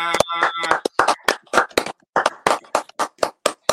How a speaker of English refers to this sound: Well, we're clapping